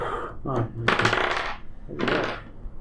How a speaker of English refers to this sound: Why'd you have to roll a d20 for that? I didn't, I just liked rolling dice.